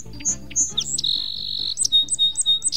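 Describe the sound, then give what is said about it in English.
A song sparrow sings one clear song: a few sharp opening notes, a long buzzy trill, then a quick run of bright chirps to finish. A low steady hum runs underneath. “Almost anywhere in the United States, you can hear the song sparrow.”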